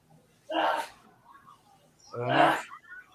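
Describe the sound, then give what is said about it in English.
Two sharp sneezes, fairly loud, about a second and a half apart, each a sudden burst that trails off quickly, with quiet in between. “Oh boy, who's sneezing?”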